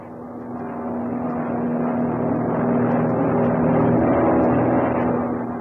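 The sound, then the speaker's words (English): A steady airplane engine drone from a plane in flight that will be landing soon hums continuously, a low, even roar with a strong sustained tone that swells slightly in the middle and holds without pause. “You'll be landing soon, Mr.”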